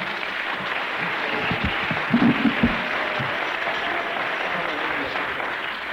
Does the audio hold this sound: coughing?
no